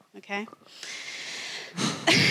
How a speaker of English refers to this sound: Okay. Doing the breathing thing again.